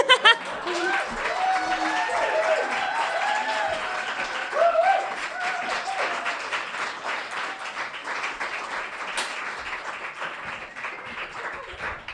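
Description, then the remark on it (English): A sharp party popper bang cracks once through steady, dense audience applause, with whoops and cheers rising early on before the clapping carries on to the end. “I like that, whoever was like doing the party popper as a part of the applause.”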